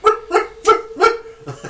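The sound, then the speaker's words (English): A person imitates a dog dreaming of running or chasing a cat, with four quick, high, whimpering yips in a steady rhythm, then a softer, muffled fifth. Fairly loud, with no talking. “Because the amount of times you watch your dog running, chasing a cat, or whatever it's doing, it's like...”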